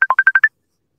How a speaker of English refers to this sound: why are you calling me? Man, answer the phone for this guy.